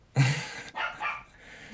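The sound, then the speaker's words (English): A dog barks loudly at the door, one sharp bark followed by a couple of shorter, fainter yips trailing off. “My dog needs to personally greet everything that walks by the door.”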